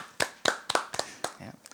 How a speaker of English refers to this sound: I actually have the least amount of the four of us, which is very surprising. I'll clap to that. Yeah.